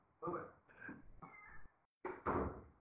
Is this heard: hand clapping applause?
no